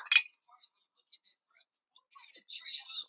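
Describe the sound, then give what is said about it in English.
During a speaker's water break for a drink of water, a glass clinks sharply at the start, followed by scattered faint ticks and a soft cluster of bright clinking and rustling near the end, with no talking. “I need a water break.”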